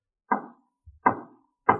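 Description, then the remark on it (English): Marshal Dillon knocks on a door: three firm knocks, evenly spaced about two-thirds of a second apart, each a sharp woody rap with a short ringing decay, plus a faint low thud between the second and third. “All you have to do is lift your arm and knock on the door.”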